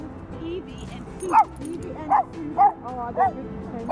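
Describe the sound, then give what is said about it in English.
An excited dog lets out five sharp, high-pitched yips and short barks in quick succession, with people murmuring in the background. “What a beautiful dog.”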